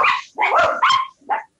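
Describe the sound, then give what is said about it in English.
Dogs barking loudly, a quick burst of three or four overlapping barks followed by a shorter final yelp, with no one talking. “Dogs go crazy.”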